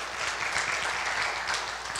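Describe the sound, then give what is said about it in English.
A church audience breaks into steady applause, a dense, even wash of many hands clapping at a moderate level for about two seconds, with no voices standing out. “I'm going to get this church to clap more often, okay?”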